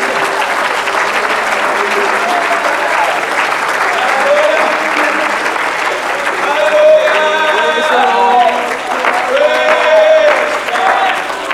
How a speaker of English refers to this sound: Oh, let's clap hands to the Lord again.